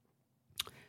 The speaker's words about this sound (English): Take a sip of my now warm beverage. It once was a cold beverage, but now a warm, bubbly.